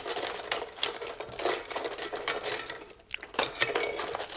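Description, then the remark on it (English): Someone rummages through a drawer, producing a steady, busy clatter of small objects rattling and scraping against each other, with a brief pause before the jostling picks up again. No one speaks. “Ooh, I got a couple of... digging in a drawer.”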